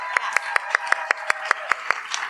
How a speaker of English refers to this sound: Round of applause for all the educators in the room.